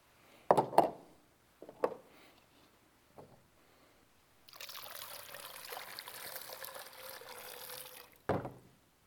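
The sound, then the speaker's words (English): Water pours steadily through a funnel for several seconds, a continuous rushing trickle, framed by a few sharp knocks and clunks before it starts and one after it stops. “It's controlled by what? How big the funnel is, right?”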